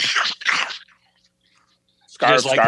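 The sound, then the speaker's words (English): Two crisp, crunchy bites of a 100 Grand caramel crunch candy bar being chewed, a short pause, then a voice starts talking. “I'm eating one right now.”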